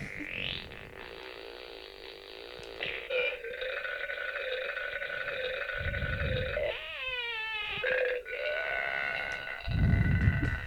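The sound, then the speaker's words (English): An Ugly Pug electronic pet dog toy plays electronic sound effects: long, buzzy, wavering burps alternate with low, rumbling fart noises, a few in a row with brief gaps, and no one speaks. “The first find today, as I struggle to turn this off, it's a, I guess, a farting and burping dog, and it's actually Ugly Pug's electronic pet dog.”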